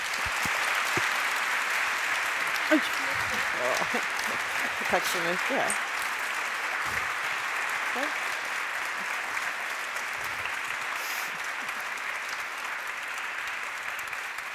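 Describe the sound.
Steady, sustained audience applause fills the whole stretch, a dense wash of many hands clapping at even loudness, with a brief spoken thank-you heard over it.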